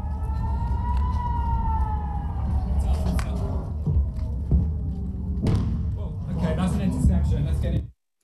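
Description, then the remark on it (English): A warning siren in a town in Israel wails steadily during rocket fire from Gaza, its pitch slowly rising and falling over a rumbling background, with occasional heavy thuds and faint voices, before the sound cuts off abruptly. “Rocket fire from Gaza has continued deep into Israel, and the sirens are near non-stop in towns close by.”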